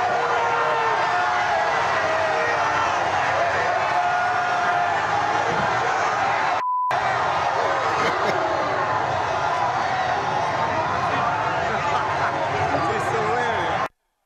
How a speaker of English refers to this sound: I was kind of expecting to hear more of a splat sound, but I didn't. Just the same. You hear the crowd kind of go, ooh, as the guy falls.